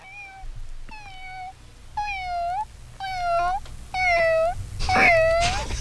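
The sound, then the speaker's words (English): A voice imitates a cat, giving six drawn-out, whiny meows in a steady rhythm about once a second. It is fairly loud, with a burst of noisy breath or laughter near the end. “Kitty?”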